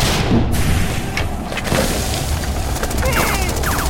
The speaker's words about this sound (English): Grenade! Take cover! Shit. We all covered our ears and hoped for the best.